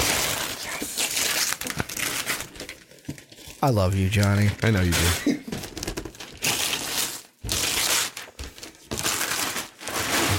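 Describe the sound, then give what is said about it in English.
Original Avengers wrapping paper on a Christmas and birthday present crinkles and tears in noisy, rustling bursts throughout, while people talk over it and one voice rises briefly in a drawn-out, tonal exclamation. “It's the same wrapping paper as before.”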